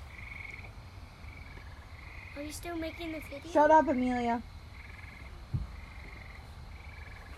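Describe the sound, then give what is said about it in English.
A frog croaks in repeated short trilling bursts at a steady pace, fairly faint and high-pitched, while people speak briefly in the middle with a low hum underneath. “Froggy oofed.”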